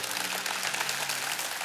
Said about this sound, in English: Come on, shout and clap on every campus.